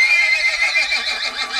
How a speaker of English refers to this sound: And the non-motorised vehicle? Well, it was a horse, of course.